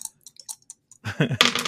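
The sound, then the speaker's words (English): Two dice being rolled, an eight-sided D8 and a four-sided D4, click and tap against a hard surface in quick, light hits, then tumble into a louder, denser clatter before settling. “I have the two dice here, a D8 and a D4.”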